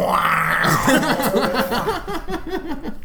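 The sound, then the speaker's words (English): A voice imitates the honking guitar riff of a romantic makeout song, starting with a rising nasal wail and then a run of quick, bouncing low honks in a steady rhythm. “Every time, that honking noise really gets everybody going.”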